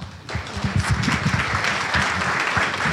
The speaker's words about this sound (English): Oh, and you don't have to clap after every megatrend. I'm just saying. You could clap after mine, though, okay. And then you could stop.